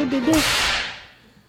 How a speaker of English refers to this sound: Couple lashes. Give him two lashes, man.